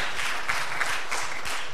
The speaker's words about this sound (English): So give yourself a big round of applause today. Amen.